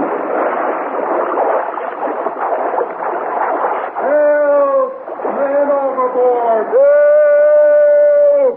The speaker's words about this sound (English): Did you hear something? I'm not sure. I thought I heard someone yell.